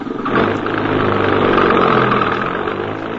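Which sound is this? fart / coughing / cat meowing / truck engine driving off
truck engine driving off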